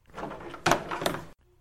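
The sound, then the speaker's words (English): A door opens with a rattling, scraping sweep as someone who had been tapping outside it is let in, punctuated by two solid clunks of the latch and frame, then cuts off abruptly into quiet. “Well, don't stand outside my door tapping like a blasted raven. Come in.”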